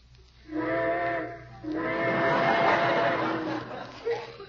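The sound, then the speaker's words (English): Two long steam train whistle blasts, the first about a second long and the second stretching nearly two seconds, with hissy, harmonic tones over a low rumble, loud. “Trains, how I love them.”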